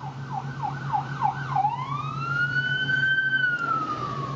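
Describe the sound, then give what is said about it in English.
An ambulance siren passes by, starting with a few quick yelping whoops before sliding into one long rising and falling wail over a steady low engine rumble. “I think that as an ambulance passes, it's going to get a little noisy here for a second.”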